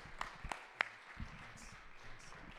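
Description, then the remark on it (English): An audience at a church service applauding faintly in praise of God: a few sharp, scattered claps ring out near the start, then fade into a soft wash of room noise and low murmuring. “Let's lift up applause to him again.”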